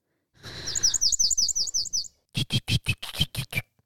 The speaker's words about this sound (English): Warbler sound effect. A willow warbler or a palm warbler? You choose.